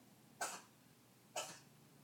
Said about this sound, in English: You hear my kitten hacking up a fur ball over there? Yeah. This is a new experience. Maybe that's why she's been so agitated really all day.